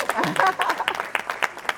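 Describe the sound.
An audience claps briefly for a guest's wife who is present, a short burst of scattered applause with a voice or two calling out over it near the start.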